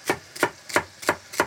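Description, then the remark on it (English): A knife cuts celery lengthwise on a cutting board, for a Trinity mix of celery, bell peppers and onions, in five crisp, evenly spaced strokes, each a sharp crunchy knock, with no talking over them. “And the celery is getting two longitudinal cuts.”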